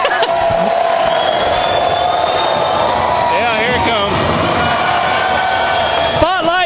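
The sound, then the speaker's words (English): An indoor concert crowd, on its feet, roars steadily for an encore, a dense wall of cheering with shrill whoops and whistles rising and falling above it, loud throughout. “And as you can hear, they're wanting more out of this.”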